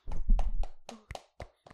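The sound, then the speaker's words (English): A few people clap briefly, with sharp hand claps that start in a quick cluster and thin out into scattered single claps before stopping. “Collectively, so give a round of applause.”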